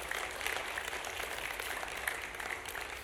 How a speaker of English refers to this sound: Come on, Woodville, give a loud clap offering of praise to our Lord God.